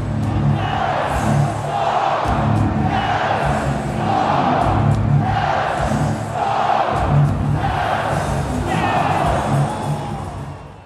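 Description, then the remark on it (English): A huge hockey crowd roars after a Stars goal scored off a quick turnover that put the team back in the game, a loud, unbroken wall of cheering that swells in rhythmic surges every couple of seconds, almost like a chant, for about eleven seconds. “it was the most massive crowd react that I could have possibly hoped for”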